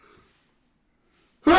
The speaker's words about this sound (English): I'm about to sneeze.